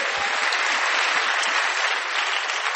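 A church audience claps for Jesus during a sermon, a dense, steady wash of applause that stays loud and even for about three seconds, with no voices standing out.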